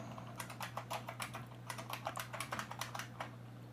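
Rapid keystrokes clatter on a computer keyboard in irregular bursts as someone looks up a song, fairly quiet, with a steady low electrical hum running underneath and no voices.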